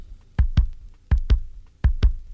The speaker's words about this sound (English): Could be yours, could be mine, could be the heartbeat of a child.